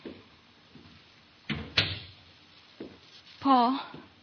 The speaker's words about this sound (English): I opened the door for him.